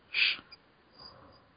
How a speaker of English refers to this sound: That's why you should never go silent, or this conversation will completely drop. So keep talking, or else you'll hear the crickets.